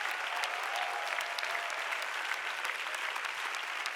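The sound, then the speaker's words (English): A large audience at Heart of God Church applauds steadily for the full length, dense overlapping claps forming a continuous, even roar with sharp individual hand claps flickering through; no one speaks over it. “So give yourself a big, big hand clap.”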